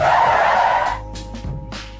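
A loud car brake screech with squealing tires, a broad harsh skid for about a second that fades into a lower engine rumble with a couple of short hissing bursts.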